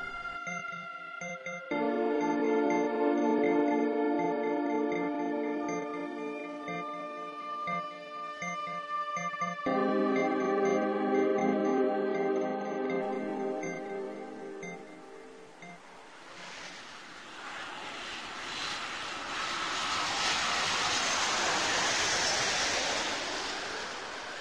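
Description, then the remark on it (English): After a stretch of sustained tonal, music-like sounds, a steady rushing river takes over, flowing continuously and fairly loudly beneath a bridge through the final third with no one speaking, on an October day of about 50 degrees. “Standing here on a bridge overlooking a river by my house.”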